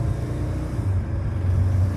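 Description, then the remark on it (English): A car engine rumbles steadily and fairly loud from inside the vehicle while driving in traffic on a windy, muggy, hot morning in Kentucky, a continuous low drone with slight shifts in pitch as it stops quickly behind a truck that stopped suddenly, then picks up speed. No one speaks. “Anyway, truck in front of me stopped real quick, so I had to stop real quick”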